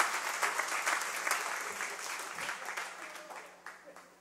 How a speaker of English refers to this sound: I was really hoping everybody would clap right there. I actually had it in my notes. Pause and let everyone clap.